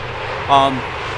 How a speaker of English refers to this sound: I'd wait for that car to go by. Truck, tractor.